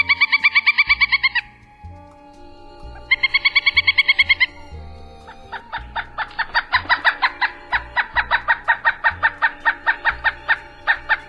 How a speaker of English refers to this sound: The call sound of the pileated is similar to that of a smaller woodpecker, the northern flicker, but louder and kind of crazier.